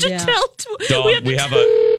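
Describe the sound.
A steady electronic telephone ring tone of an incoming call sounds near the end, loud, over people talking continuously throughout.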